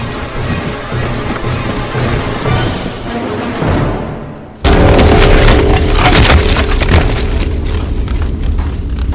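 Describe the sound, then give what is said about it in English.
A low, steady rumble builds, then a giant city bell crashes down onto the city guard with a sudden, loud crash and shatters into dozens of pieces, followed by a sustained roar of debris and a faint metallic ringing underneath. “The Rulzhaven Bell crashes down to Earth, killing the city guard as it shatters into dozens of pieces.”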